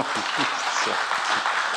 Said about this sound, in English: Well, we can clap, okay.